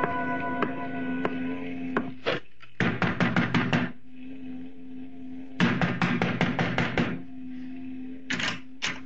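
Several bursts of loud, rapid knocking on a wooden door, each a quick run of sharp raps, separated by pauses over a steady low hum.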